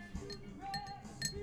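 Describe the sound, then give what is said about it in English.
A glass is handled, giving a few light, bright clinks with a short high ringing tone after each, spaced unevenly over a quiet background with no talking. “Why are you fucking with your glass?”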